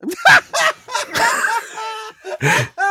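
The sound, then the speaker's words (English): A neighbor's bird calls in a quick string of short, squawky chirps and warbling notes, several bursts in a few seconds, fairly loud and clear with no one talking over it. “Oh, do your neighbors have a bird?”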